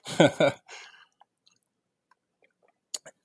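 Someone drinks water: a couple of loud gulping swallows, then quiet wet mouth clicks and a sharp little click near the end, with no talking.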